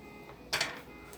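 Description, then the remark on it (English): A deadbolt lock on the door of a soundproof room being turned: one brief mechanical clunk made of two quick, bright metallic clicks in close succession, moderately loud against a faint steady hum, with no voices. “But all I'm saying is, I can't believe we just deadbolted ourselves in here.”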